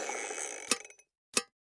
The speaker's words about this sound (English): Wait, what was that? Nothing. I was just clicking on this pen.